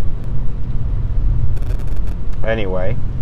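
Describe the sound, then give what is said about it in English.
Steady road rumble inside a new car with a few faint clicks, then the car's lane departure warning, a short, warbling electronic alert tone, rings out clearly near the end. “Anyway, lane departing. I love this new car. It tells me when I'm leaving lanes.”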